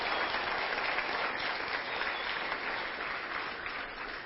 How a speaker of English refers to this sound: And we're going to applaud for you on this side, and I know they are on that side as well.